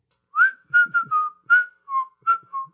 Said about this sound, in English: Can you recognize that? We should play a game I whistle a song and then you can recognize it.